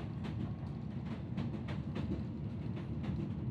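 Steady rumble of train wheels rolling along rails, with a continuous low roar and recurring faint clicks and rattles, heard from inside a moving train carriage with a steady, trembling motion.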